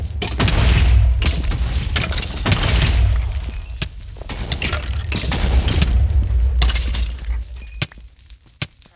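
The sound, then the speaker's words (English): A video game cannon, cannon 2, fires with a deep boom, followed by a sustained rumbling explosion with crackling, shattering debris, loud and continuous, then tapering into scattered sharp clicks. “Cannon 2 ready to fire. Hit the button. I'm trying. There it goes.”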